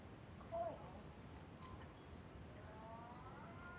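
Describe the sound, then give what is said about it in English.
A cat in heat yowls faintly: a short wavering cry, then a longer, rising drawn-out wail against steady low background noise. “What's that noise? It's a cat. In heat.”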